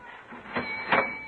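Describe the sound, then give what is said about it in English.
A pharmacy cash register is opened with two quick mechanical clatters, the second louder, over a faint steady ringing tone. No one speaks. “Open your cash register and make it official.”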